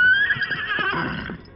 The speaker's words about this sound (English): As the Lone Ranger and Tonto waited at the top of the rise, Silver could sense there was danger ahead and whinnied his defiance.